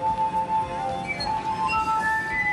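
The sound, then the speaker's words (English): Water-filled glasses ring with clear, sustained pure tones, one steady mid-pitched note joined by a few higher notes in turn, forming a slow, shimmering melody with long, lingering rings. “And I'm surprised at how long the ring... Oh, that was good. The ring lasts a while.”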